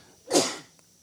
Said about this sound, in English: And you sneezed. Come on, …. Take it easy, ….